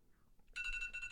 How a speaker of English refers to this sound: When the noise starts, you start chugging. Okay. As ready, soon as the radar, set, go. As soon as the radar noise goes, we drink.